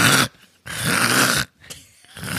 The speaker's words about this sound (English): Oh, that's a terrible noise. Yeah, that is. It has the boy's full attention, as in our dog's full attention. And it does, I think it's because it sounds like you are getting ready to throw up like a hairball. Not me. That was the European lizard.